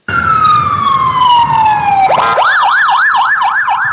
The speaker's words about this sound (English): Here we go. Sirens.